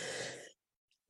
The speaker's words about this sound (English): Excuse me. Bless you. Sorry. Beautiful. You even sneeze beautifully.